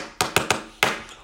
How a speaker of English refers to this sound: We clap our hands at the city.